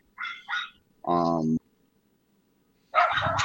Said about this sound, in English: Why are the dogs broken? And then. That's my neighbor's dogs. Oh, my dogs are inside.